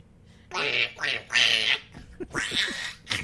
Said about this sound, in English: Which one was your favorite? The duck or the dog? The quack. The quack? Yeah.